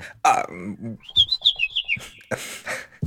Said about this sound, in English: Quiet, bird.